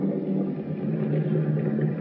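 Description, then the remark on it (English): A car engine runs steadily as the car turns into the drive of a palatial estate: a low, continuous rumbling hum with an even drone and no voices over it. “Turn out your lights and turn off your motor.”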